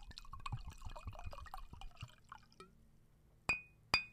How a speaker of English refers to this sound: I need you to pour it up and then you announce yourself. Representing Double Time Fitness. Pouring up it slow.